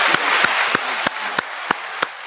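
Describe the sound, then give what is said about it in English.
A steady wash of applause from a group, with one set of sharp, evenly spaced claps cutting through about three times a second. No one speaks. “Another applause for that.”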